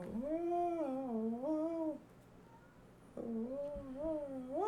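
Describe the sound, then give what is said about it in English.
Two long, wavering cat yowls rise and fall in pitch, separated by a short pause, the drawn-out growling wails of cats squaring off in a fight, fairly loud. “Hey, my cats are fighting just as this match is wrapping up here.”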